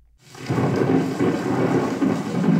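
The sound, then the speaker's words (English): A recording of rain and thunder from the Great Plains, played in the Hall of North American Indian at the Peabody Museum: rain pours steadily while a low, rolling rumble of thunder swells in after a brief quiet start, a dense, continuous storm sound with no voices. “Enter the Hall of North American Indian at the Peabody Museum, and you're greeted by a recording of thunder and rain from the Great Plains.”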